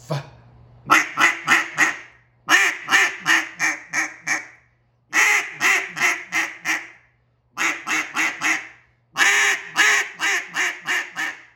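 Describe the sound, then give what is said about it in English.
Rapid, loud bursts of quacks blown on a cut-down duck call in a calling lesson demonstrating the quick burst, five quick strings of four to six sharp, raspy notes each, separated by short pauses, with a faint low hum beneath. “CUT-DOWN DUCK CALLING LESSON AND TECHNIQUES”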